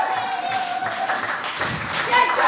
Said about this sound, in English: Keep that applause going.